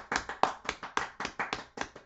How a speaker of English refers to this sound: and he goes, excuse me, round of applause for MJF, please.